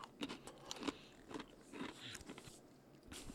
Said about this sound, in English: So I need to make a decision while I chew this pretzel with chocolate hummus.